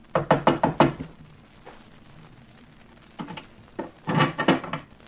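Sharp knocking by a waiter on a heavy iron door at the top of a narrow staircase: a rapid volley of about five raps, a pause with a few scattered taps, then another quick burst of knocks. No one speaks.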